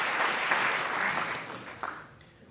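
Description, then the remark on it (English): A crowd claps steadily in a dense, continuous patter that gradually thins and fades over a couple of seconds, with no voices over it. “I want to clap for that.”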